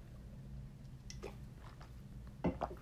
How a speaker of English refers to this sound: Just gonna drink some water.